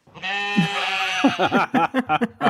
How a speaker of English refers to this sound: What noise does a sheep make? Bah.